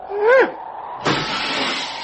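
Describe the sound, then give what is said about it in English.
A brief whistling tone sweeps through as a rock thrown into a canyon falls, then a sudden loud impact as the rock strikes a car's metal body at the bottom, followed by a second of harsh, sustained rattling noise. “Listen how long it takes this rock to fall down there.”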